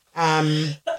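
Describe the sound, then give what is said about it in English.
A single sneeze: a drawn-out voiced intake that builds for about half a second, then breaks into a short, sharp burst at the end. “Bless you.”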